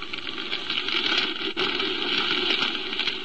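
Fire engines and police cars streak through the streets toward the Olympus Piano Factory, which is on fire. Their engine noise and road rumble form a dense, continuous, loud rush, with no voices.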